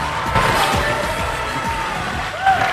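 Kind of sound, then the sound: crowd, applause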